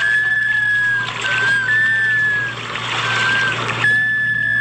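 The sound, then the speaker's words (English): A black scoter (Melanitta americana) gives a series of drawn-out, plaintive whistles, four or five in a row, heard fairly clearly over a steady wash of water and wind. “The whistling Butterbill, the black scoter, Melanita americana.”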